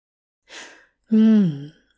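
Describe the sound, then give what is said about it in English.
A sharp, breathy gasp, a quick rush of air followed by a brief voiced catch that falls in pitch, with silence around it and no talking. “Hop trailed off into a gasp when Dream pushed his knee between his legs and put the card under Hop's chin to lift it.”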